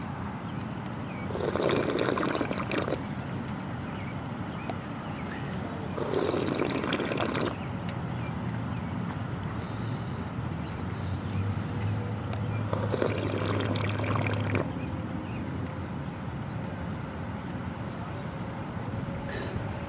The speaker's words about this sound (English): I'm gonna drink some water now.